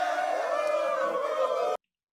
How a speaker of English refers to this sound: That calls for some applause.